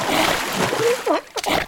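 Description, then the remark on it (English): A loud, sloshing splash of water in a large water tank in a small studio, lasting over a second, with brief gurgling or vocal-like tones rising through the middle and a final burst of spray near the end. “Why is there a large tank full of water in a small podcast studio, you're probably wondering?”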